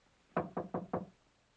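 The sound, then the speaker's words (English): Four firm knocks on a wooden study door, evenly spaced in quick succession, fairly loud, with quiet room tone before and after and no voices. “Didn't you hear me knock?”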